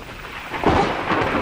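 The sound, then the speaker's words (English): A loud thunderclap from a lightning strike crashes and rumbles amid the steady hiss of falling rain, swelling suddenly partway through and rolling on without fading. “The lights have gone out. Lightning must have struck the power line.”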